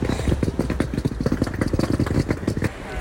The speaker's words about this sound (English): Oof, listen to my bag on those cobblestones.